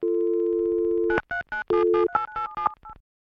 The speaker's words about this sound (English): and dials the only number stored in the contact section.